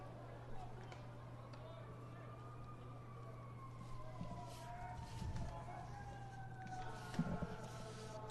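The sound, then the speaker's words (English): Faint fire truck sirens wail in slow rising and falling glides, several overlapping, beneath a steady low hum and indistinct background murmur, during a baseball game at Smith's Ballpark near State Street and 1300 South in Salt Lake City. “Hear the fire trucks in the background here.”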